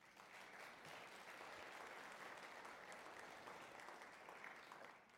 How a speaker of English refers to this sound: For those that are with us in this hour and for those who will join us next hour for a lunch in their honor, church family, would you give them a round of applause?